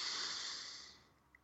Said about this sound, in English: So breathing in through your nose.